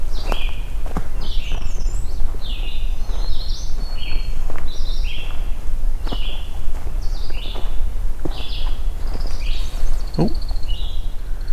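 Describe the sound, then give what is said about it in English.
An American woodcock taking off, its wings giving off a rapid series of high, twittering whistles that repeat throughout, over steady outdoor noise and occasional sharp crunching steps. “An American woodcock just taking off.”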